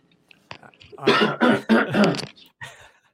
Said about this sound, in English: I said I'm having the worst time just clearing my throat.